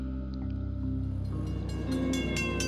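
A train rumbles past with a steady low drone, then rhythmic clattering grows louder as the cars roll by, with a faint tonal whine on top and no voices.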